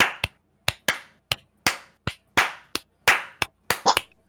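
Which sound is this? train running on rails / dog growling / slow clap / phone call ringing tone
slow clap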